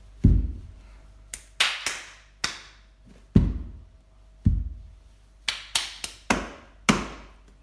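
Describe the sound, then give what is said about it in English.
Hard percussive bangs on a floor as a kneeling person bangs a foot, knees and hands during improvised movement, about a dozen in an uneven rhythm, some deep and thudding like a foot or knee, others sharp and slapping like hands, each ringing briefly. “So basically, I'm kneeling down on the floor. And I just take one of my feet and I step forward and I just bang my foot and I bang my knees and my hands and it really makes it sound like hand boning kind of.”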